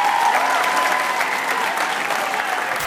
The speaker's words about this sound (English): Give yourselves another round of applause.